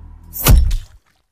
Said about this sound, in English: I went in, took the hammer from the waistband of my trousers, and as he turned to walk ahead of me, I smashed him mightily on the back of his head.